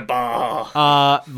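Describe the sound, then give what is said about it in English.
A person's voice imitates a sheep's bleat, voicing a unicorn talking to sheep, in two drawn-out, wavering bursts, the second steadier and higher, loud with no other talk. “I love a unicorn saying bah.”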